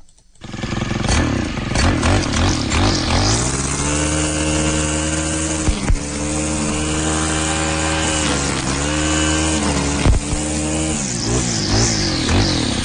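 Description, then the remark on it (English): A weed eater runs with a loud, steady buzzing whine, its pitch dipping and rising as the engine revs, with a couple of sharp clicks along the way and no voices. “That's a weed eater.”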